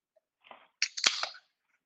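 A can of wine cracks open: a faint scrape, then a sharp metallic pop with a quick burst of fizzing hiss, fairly loud, with no talking.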